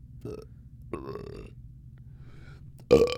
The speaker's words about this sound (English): Yeah, everybody can burp on command. This is gross. Why are we doing this? Do you think anyone... No, I'm sure there are people out there that can't burp on command. Yeah, but it's not impressive. It's not funny.